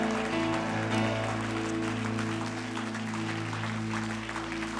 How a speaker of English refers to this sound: Clap your hands and tell God you want to get there.